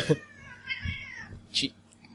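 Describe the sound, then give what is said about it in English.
A cat meows with a drawn-out, wavering cry lasting about a second, moderately loud, with faint background noise and a brief hiss-like burst near the end. “The cat does not like that.”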